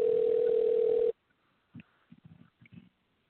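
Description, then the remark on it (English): A loud, steady electronic phone ring tone holds for about a second as a call to a guest connects, then cuts off abruptly, leaving near silence broken by a few faint, muffled bursts like voices on the line. “And that ringing is going to be”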